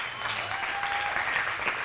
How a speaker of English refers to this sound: The claps are coming from the OGs that are purely in it.